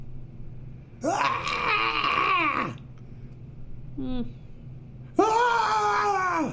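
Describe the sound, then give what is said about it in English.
A voice imitates blood-curdling screams with two long, strained wailing cries separated by a brief squeaky yelp. The sounds are fairly loud, with quiet gaps between them. “Blood-curdling screams alert you that Vorakesh's minions are ready to kill you.”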